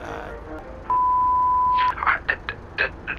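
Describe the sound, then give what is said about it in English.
A single steady electronic beep lasting about a second, the connection tone of a call from a prison phone, followed by muffled, crackly voice fragments as if heard over a telephone line. “I'm calling from a prison phone.”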